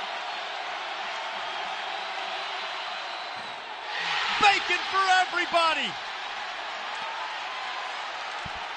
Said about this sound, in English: After Jordan Miller missed that free throw, the crowd's going nuts. Here's why. If he misses the second one, everybody in this house gets free bacon.